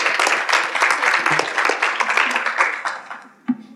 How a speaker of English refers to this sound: Would you please come up to the stage? Let's have a round of applause for her.